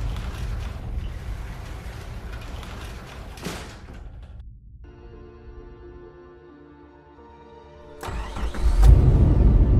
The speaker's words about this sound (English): another car pulled up in front of Luke's house